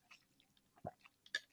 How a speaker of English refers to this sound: Excuse me, my voice is dead. I'm taking a sip.